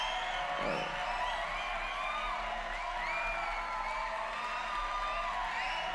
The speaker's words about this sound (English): And, of course, I couldn't be where I'm at if it wasn't for you guys. So, definitely got to give you guys a round of applause.